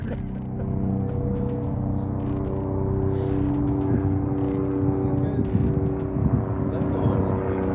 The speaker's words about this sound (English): Got a helicopter going over us.